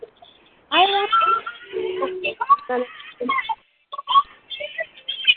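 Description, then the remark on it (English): A voice over a phone line sounds thin and tinny, cutting in and out in choppy fragments with brief dropouts between bursts of speech. “You're breaking up at every time, everything you say, you're breaking up.”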